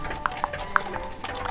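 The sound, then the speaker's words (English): A digital horse-hoof sound effect clip-clops in a quick, slightly uneven, metronome-like rhythm, about five or six snappy, hollow clicks over a soft background murmur. “It's gonna, yeah, them, this is one horse with only three legs. And one's a digital horse.”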